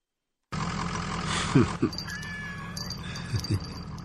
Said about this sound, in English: He's watching a cat video.